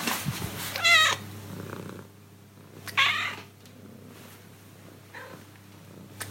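A cat named Lynn 50 meows several times, with two louder, stretched cries near the start and middle and a softer one later, over a low continuous purr-like hum.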